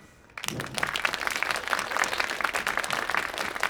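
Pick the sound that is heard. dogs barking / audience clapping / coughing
audience clapping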